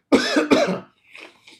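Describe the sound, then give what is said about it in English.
Two loud coughs in quick succession, followed by a couple of softer, breathy throat-clearing sounds as it trails off. “Sorry, I'm going to cough.”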